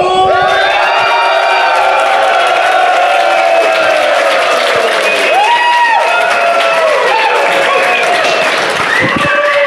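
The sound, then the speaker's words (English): A large live audience in Indianapolis, in a former church, cheers and applauds loudly and continuously, with whoops, shouts and sustained clapping filling the whole stretch, energetic throughout. “Holy cow. The crowd comes to life.”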